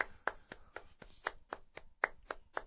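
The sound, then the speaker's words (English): A hockey clap: around eleven sharp hand claps in a steady, quick rhythm, roughly four per second, crisp and fairly loud with no voices. “We've talked about it before, the hockey clap.”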